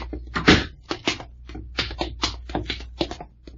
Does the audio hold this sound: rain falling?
no